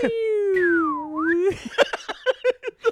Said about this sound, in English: the whistle. The slide whistle.